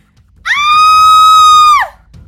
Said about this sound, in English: who had been coming around, screamed.